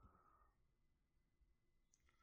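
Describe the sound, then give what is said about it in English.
Faint, quiet clicking of keys on a keyboard while typing into Google, a few soft taps clustered toward the end over a low background hum, with no one speaking. “Typing into Google.”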